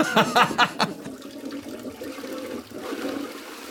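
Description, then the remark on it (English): A toilet flushes, opening with a gurgling surge that settles into a steady rush of swirling water for several seconds. “Where's that toilet flush sound”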